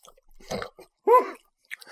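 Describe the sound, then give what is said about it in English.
Wet chewing of a huge bite of food, a few squishy crunching bursts over about two seconds, broken by a short voiced groan in the middle. No words are spoken. “I swallowed mine. I took a huge bite.”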